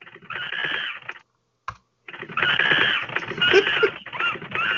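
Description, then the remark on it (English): Rapid, dense keyboard typing clatters fairly loud, stopping briefly after about a second with a lone click, then resuming as a longer, busier burst of keystrokes. “All right, there's one more person waiting in the wings, and that's the typing monkey, because that means it's news time.”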